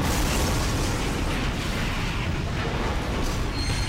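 A train hits a loose, disconnected section of track and derails, its cars smashing into each other in a continuous, thunderous roar: dense low rumbling with grinding, crunching noise that stays loud and steady throughout, with no voices.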